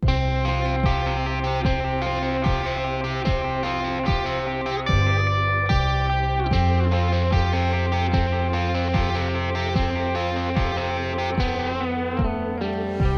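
A loud, full-band worship-style rock song, a parody about Chick-fil-A fast food, plays with distorted electric guitars, sustained keyboard chords and a steady, driving drum beat, purely instrumental with no singing or talking throughout.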